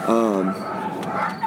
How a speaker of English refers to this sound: Holy crap, it sounds like a dog pound just came over here.